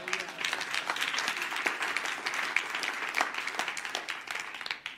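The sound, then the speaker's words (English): A crowd applauds Kevin Honeycutt of Colorado Springs, Colorado, steadily for about five seconds, a dense patter of many hands clapping at once with sharper individual claps popping out, holding fairly even loudness before tapering slightly at the end. “Give Kevin a round of applause.”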